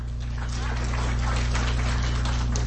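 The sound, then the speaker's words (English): An audience claps their hands to show they use email or a computer, a dense, steady patter of many hands that holds at an even loudness for a few seconds over a low background hum. “How many of you here do email, send email, or use a computer? Clap your hands.”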